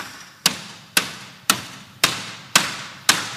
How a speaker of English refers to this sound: Ooh, that makes a lot of noise. Now let me borrow the hammer now that you've done the hard work. There's something about this sound. That resonates with heaven.